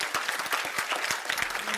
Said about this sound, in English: I want you to clap your hands and say amen. Will you do that?